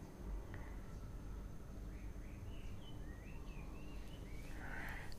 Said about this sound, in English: So listening to the birds is more refreshing and uplifting.